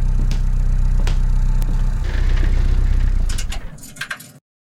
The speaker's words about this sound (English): When I come down the stairs, I notice the sound of a car running in the garage.